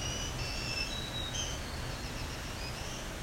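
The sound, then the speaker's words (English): Thin, high-pitched whistled phrases of a green warbler's song drift faintly over a steady hiss of background noise, several short notes rising and falling with no voices present. “That really sounds like the voice of a green warbler.”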